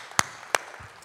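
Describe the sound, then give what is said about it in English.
A few scattered hand claps from a church audience as a returning guest preacher is introduced: two sharp, separate claps about a third of a second apart, then a fainter one near the end, with no talking. “Some of you are applauding because you remember him, perhaps.”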